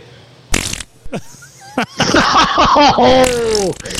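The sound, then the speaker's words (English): A loud, wet fart sound effect sputters for a couple of seconds, with bubbly, squelching pitch sweeps after a few short preliminary pops; no one speaks over it. “Ooh, that's juicy. That's a queef.”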